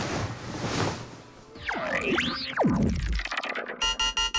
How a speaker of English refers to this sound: eyes fluttered open to an incessant beeping sound. She scrambled to her feet and scanned her surroundings. Everything was still a little foggy, but she saw a flashing red button, which she assumed was the cause of the infernal beeping.